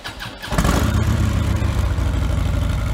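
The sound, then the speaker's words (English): A stock 2015 Harley-Davidson Street Glide motorcycle, with stock air cleaner, exhaust system, mufflers and motor, fires up after a brief quiet moment, then settles into a loud, steady, low rumbling idle, with no voices. “The first one here is the 2015 Street Glide. Bone stock air cleaner, exhaust system, mufflers, and motor.”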